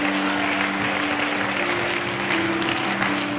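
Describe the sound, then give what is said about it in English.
A church audience clapping their hands in praise to the Lord, a dense, continuous patter of many claps at an even loudness for several seconds, with a steady low sustained tone running underneath. “If you're really glad to be in church, really clap your hands unto the Lord.”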